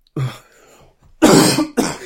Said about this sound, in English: Yeah. Christ, sorry, listeners. If you can't tell, I have got a cough.